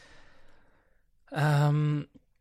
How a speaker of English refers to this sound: I'm breathing too much into the mic. I'm sorry.